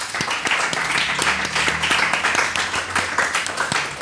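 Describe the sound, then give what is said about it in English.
An audience applauds Samer Behan steadily, many hands clapping in a dense, continuous patter at a fairly loud, even level throughout, with no talking over it. “So, round of applause to Samer Behan.”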